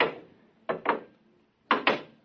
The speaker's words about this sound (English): The door's closed behind us. Try the lock. No, it's no use. Here, let me try. Holy smoke, I can't get it open.